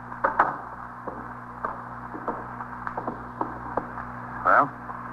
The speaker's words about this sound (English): Close the door